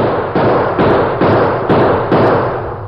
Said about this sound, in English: At the same time, the sheriff began shooting.